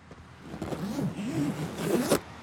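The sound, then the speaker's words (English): A green duffel bag's zipper is pulled open in the back of a truck in one long, ratcheting stretch lasting about two seconds, ending with a sharp final tug, over a faint low rumble. “Green bag in the back of the truck, the one I stopped to grab on the way out of town. Check it out.”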